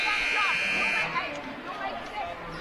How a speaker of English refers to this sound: And a whistle will stop play. Out of bounds, Hellgate ball.